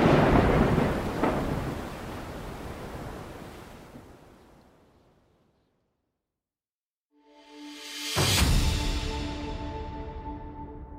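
Heavy thunderstorm sounds: a loud rumble with a rain-like rush fades to silence, then a sharp thunderclap bursts out and is followed by a sustained roar of storm noise.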